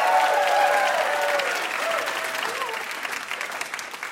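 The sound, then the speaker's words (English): A live audience at Ask Me Another bursts into sustained applause for guests Adam Davidson and Alex Blumberg, dense clapping with a few cheers and whoops on top, gradually thinning out toward the end. “How about another round of applause for Adam Davidson and Alex Blumberg?”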